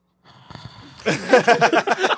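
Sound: imitated snore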